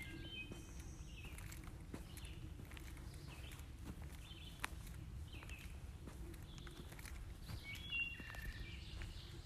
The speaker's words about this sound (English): A few minutes later, I arrived at my destination, an open clearing surrounded by a swamp, beautiful stone walls, and conifer trees. Not long after we arrived, I heard the first birds, wood thrushes.